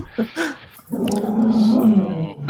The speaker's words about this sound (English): Growling? Yeah.